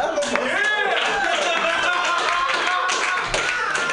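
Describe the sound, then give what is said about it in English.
A crowd applauds steadily for about four seconds, a dense patter of many hands clapping at once, with voices and cheers rising and falling over the clapping. “Round of applause for teeth and the vagina.”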